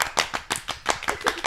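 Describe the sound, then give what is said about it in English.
Brief hand-clapping applause for Apollo, a quick, steady run of sharp claps that sounds like just a few people clapping together, with no talking over it. “Let's give Apollo some round of applause.”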